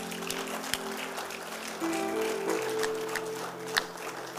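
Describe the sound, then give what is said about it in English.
An audience gives the Lord a clap offering, clapping steadily for several seconds, a dense, even patter of many hands, while sustained keyboard notes shift pitch underneath. “Then give the Lord a clap offering.”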